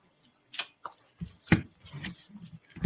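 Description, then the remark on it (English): A Mermaids and Dolphins card deck being shuffled: a handful of crisp, papery snaps and taps arriving at an uneven pace, with no voices over them. “Let me give these a shuffle.”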